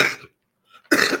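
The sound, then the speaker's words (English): Two harsh coughs, a short one at the start and a stronger one after a brief silence, with no talking in between. “My cough medicine is working.”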